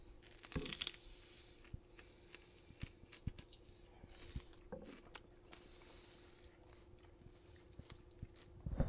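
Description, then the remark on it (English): Crunchy biting followed by steady chewing of a creamy leprechaun log snack, with sharp irregular crackles and crunches scattered over several seconds against a faint low hum, no talking. “It's a zesty crunch.”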